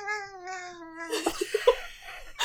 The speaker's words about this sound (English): Cat's fine. Cat's just very, very loud.